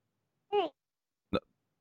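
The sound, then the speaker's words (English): Two short bursts of a stifled hiccup as someone tries to hold it in: a brief voiced, pitched squeak followed about three-quarters of a second later by a sharper, clipped gulping catch, then silence. “That was an attempt at holding in a hiccup.”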